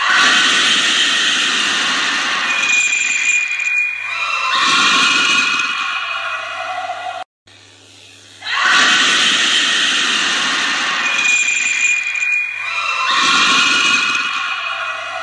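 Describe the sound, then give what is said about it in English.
Loud, shrill screaming from girls on seeing a woman, coming in two harsh bursts, then a brief silent gap and the same pair of screams again, piercing with no talking. “So you can hear the first girl see this woman, then you can hear the second girl react and see this woman when she turns around to see her friends screaming.”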